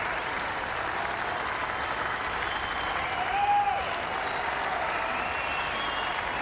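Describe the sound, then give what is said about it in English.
Sustained crowd applause from a golf gallery for Tiger Woods as he crosses the Swilcombe Bridge heading up the 18th green midway through Friday afternoon, with Rory McIlroy on the first also applauding; a dense, steady patter of many clapping hands that swells slightly midway and carries on without a break, with no voices standing out. “And the players over on the first, Rory McIlroy just pauses for a moment, turns and applauds.”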